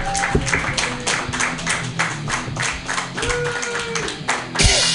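A comedy club audience applauds, dense clapping filling the whole clip with steady, fairly loud energy and a brief swell near the end.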